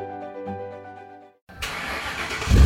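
A car engine is started with a key turn: a steady whirring crank, a brief pause, then the engine catches with a loud, rough roar that grows louder toward the end. No one speaks.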